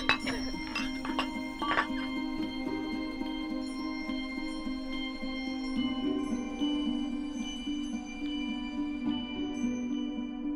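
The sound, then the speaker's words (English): A few sharp wine glass clinks ring out close together at the start in a toast, followed by a steady sustained ringing tone that lingers to the end. “Let's do this once again. Okay. Cheers. Cheers.”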